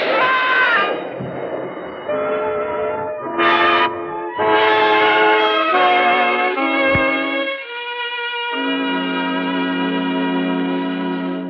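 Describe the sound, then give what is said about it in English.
An elevated train rumbles past, loud and continuous, with shrill metallic squeals and horn-like tones shifting in pitch for about eleven seconds. No one speaks. “You're waiting for the elevator train to drown out the shot.”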